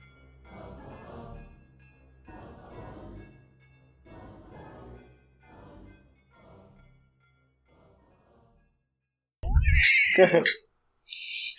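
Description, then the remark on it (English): A stretch of muffled voices fades out, then a cat named Sasha lets out a loud meow, followed by a brief second cry near the end. “I heard a cat. Meow.”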